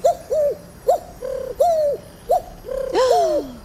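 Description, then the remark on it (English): A carrier pigeon coos repeatedly in a steady, bubbling rhythm, each soft rising-and-falling call clear, ending in a longer overlapping burst of cooing; no one speaks. “A carrier pigeon will arrive shortly.”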